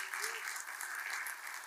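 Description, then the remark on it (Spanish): An audience applauds the Lord, a dense, steady wash of many hands clapping at even loudness for the whole short stretch, with a faint voice briefly rising beneath it at the start. “Entonces, denle al Señor un aplauso porque él puede.”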